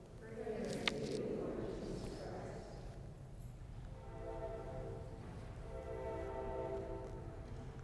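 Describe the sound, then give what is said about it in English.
A train rumbles steadily, a low continuous roar filling the space, with a sustained horn-like tone sounding through the second half as it passes. “Not so much the train affecting my sleep, but the train affecting Mass.”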